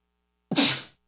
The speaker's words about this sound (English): Bless you. Thank you.